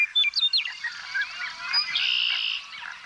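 A dense chorus of blackbirds and white-throated sparrows calling and whistling from reeds surrounding a lake, with overlapping chirps, trills and clear whistled notes blending into a steady wash of birdsong, without any talking.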